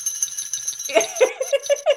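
Small bells jingle in a steady, shimmering high rattle as they're shaken, while short pitched vocal sounds rise and fall over the second half.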